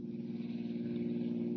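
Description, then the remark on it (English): A powerful black sedan speeds through the night along a highway far out of town, its car engine humming steadily at speed: a continuous low droning roar with road noise, sustained, no voices present. “a powerful black sedan speeds through the night, far out of town on a highway for the West.”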